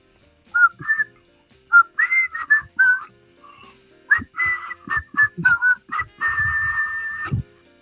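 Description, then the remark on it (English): A loud closed-mouth whistle, sent in as a voice note, plays a halting tune of short, wavering notes with brief gaps, ending on one long held tone. There is no talking. “I'm not bragging, but I can whistle with my mouth shut.”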